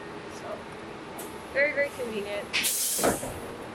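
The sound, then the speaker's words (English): A city bus arriving at a bus stop lets out a loud burst of air-brake hiss, sharp, over a low street rumble with faint voices and chirpy tones just before it. “And then I catch the bus just right across the street here. Like that.”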